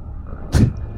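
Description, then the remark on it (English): A single short creature growl, gruff and fairly loud, bursts out midway over a low steady background rumble, voiced by a group of people as part of the show's sound design. “So all the growling is a bunch of people, not just Worf, right?”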